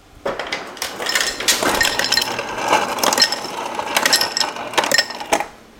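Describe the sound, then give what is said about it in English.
Ice cubes clatter out of a kitchen fridge's dispenser into a hand-held glass as a lever is pressed, a rapid jumble of clinks and knocks over a steady mechanical whir, fairly loud, lasting several seconds. “And that is ice magically falling out of the fridge into my glass.”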